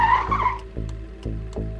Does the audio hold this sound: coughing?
no